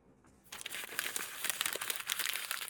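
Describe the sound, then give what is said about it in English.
A paper note slides under a door with a crisp papery scrape and crinkle that starts after a brief hush and keeps rustling steadily to the end, with no voices. “Slide it under the door?”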